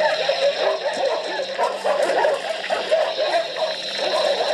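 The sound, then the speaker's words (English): A chaotic din of frantic dogs barking and yelping continuously, layered over a steady, rattling hiss with a strange, insect-like buzz running through the whole recording. “You can hear the mayhem of the dogs. Mm-hmm. But then you hear that That's hissing. Exactly what it sounds like a rattlesnake.”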